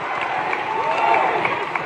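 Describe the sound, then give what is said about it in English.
A crowd at an Iowa campaign event applauds and cheers for Congresswoman Pramila Jayapal, Ilhan Omar and Congressman Mark Pocan in a steady, dense wash of clapping, with a few rising whistles and shouts mixed in, staying loud and unbroken throughout. “One more round of applause for the Congresswoman Pramila Jayapal, Ilhan Omar, Congressman Mark Pocan.”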